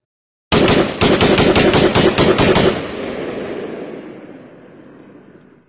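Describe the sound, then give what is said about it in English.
A loud, rapid burst of automatic gunfire, about a dozen sharp shots in quick succession over two seconds, followed by a long reverberant echo fading away. No one speaks. “Gunshots began to ring out.”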